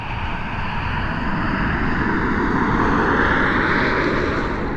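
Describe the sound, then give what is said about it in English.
A vehicle passes by with a loud, steady engine roar and rushing rumble whose pitch slowly dips and rises as it goes past. No one speaks. “a vehicle passes by.”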